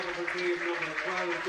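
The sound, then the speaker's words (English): Steady crowd applause at a Carlow team match as a player, number 17, is substituted, making a dense, even wash of clapping throughout, with a man's voice talking over it the whole time. “That's a lovely round of applause”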